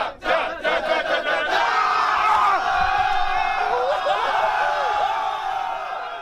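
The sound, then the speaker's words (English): A large crowd cheers and shouts loudly and continuously as guys run at each other full speed down a small aisleway during a choir's tour, with rising whoops and yells blending into a dense roar that holds steady for several seconds, chant-like voices surging within it. “So it's just interesting because, you know, you have guys running at each other full speed down this small little aisleway with people cheering all around and the chant that started off, and just a very unique experience to witness.”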